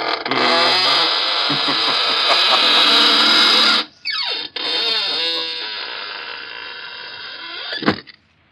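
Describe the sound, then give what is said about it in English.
A door creaks loudly in a long, grinding groan that wavers in pitch, breaks off briefly, then resumes in slower, stuttering creaks before ending with a short thud. “We'll be trying your creaking door again soon for some more laughs.”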